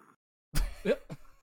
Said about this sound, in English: She actually growled. It's not growling, it's breathing.